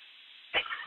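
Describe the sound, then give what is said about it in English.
One short, sharp cough bursts out over a steady low hiss, with a little muffled noise trailing after it, from a person just in a car accident, the car lying on its side, during a call to emergency services. “Coughing my lungs out.”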